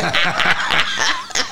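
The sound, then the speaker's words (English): A quick run of harsh coughs, about five rasping bursts in a row with brief voiced catches between them, loud and with no talking over them. “But of course, at my age, you can see I'm having a coughing fit.”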